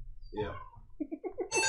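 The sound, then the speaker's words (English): A short electronic phone ringtone: a warbling tone, then a quick run of repeated beeps rising into a brighter, buzzier burst, fairly loud with no talking. “Oh, hang on, I got a call. That's actually one of my ringtones.”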